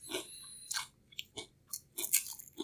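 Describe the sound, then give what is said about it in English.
Crisp crunching as someone chews a seasoned cracker, with several sharp bites in an irregular rhythm and brief quiet gaps between them. No talking. “I'll give you half, but it's like, go ahead and just take a bite out of it, and okay.”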